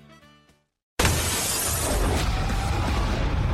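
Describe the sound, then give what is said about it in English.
A brief musical tone, a moment of silence, then a sudden loud crash of window glass shattering, with a dense burst of breaking and tinkling debris that carries on noisily to the end. “The window.”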